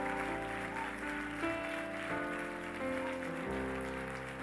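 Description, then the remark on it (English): A crowd applauds people coming forward to make right with Father God, a steady, dense, even wash of clapping while sustained music chords play underneath, with no talking throughout. “Friends, give them a real hearty round of applause as they come to make right with Father God.”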